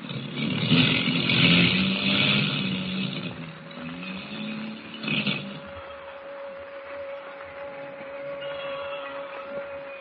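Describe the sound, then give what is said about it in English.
A loud, rough airplane engine drone sputters and surges unevenly as the motors misfire, with one sharp burst midway, then settles into a thinner steady hum carrying a faint whining tone; the plane is dropping lower in a storm. “The motors are missing worse than ever. We're dropping lower.”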